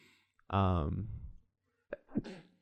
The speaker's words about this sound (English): Bless you. Thank you.